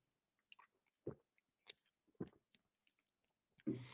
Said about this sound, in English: Let me take a sip because that's a good way to summarize it.